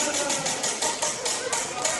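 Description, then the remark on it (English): The Wheel of Eight, a prize wheel, is spun to pick a song from a song list. It ticks steadily, its clicks coming in a quick, even rhythm over a dense, bright mechanical whir that stays fairly loud throughout. “I'm spinning the Wheel of Eight.”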